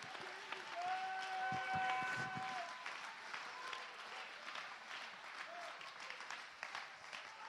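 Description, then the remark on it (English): A church audience claps their hands in a dense, steady wash of applause lasting several seconds, with a few sustained tonal sounds like organ or keyboard notes rising early on. “Clap your hands.”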